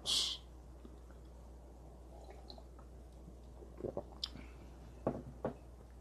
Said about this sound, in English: Sipping some coffee, man.